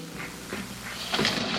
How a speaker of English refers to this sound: Okay, so this is just the spring reverb. This is the way they do this, is they use a spring reverb.